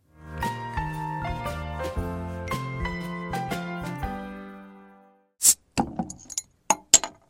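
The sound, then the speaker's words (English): A few seconds of gentle melodic music fade out, followed by a quick series of bright glass clinks from a glass of Rural City Beer Company's Wake Up Call Stout being tapped or set down, with no voices. “taking a break from our conversation for a glass of Rural City Beer Company's Wake Up Call Stout, a light-bodied stout brewed with roasted malts and low hop bittering.”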